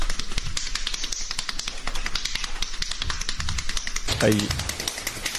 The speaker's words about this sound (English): He has pounded the fist 273 times in 30 seconds. That's a lot. How many times is he? He beat the previous record of 174 set in April.